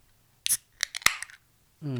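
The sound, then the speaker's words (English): A 7.1% alcohol beer made with milk sugar is opened and poured: a quick hissing burst, then a run of light metallic clicks and one sharp snap, followed by a short voiced hum at the end. “So I'm going to crack this bad boy open, and I'm going to give us some pours, and it is going to go down smooth, I hope.”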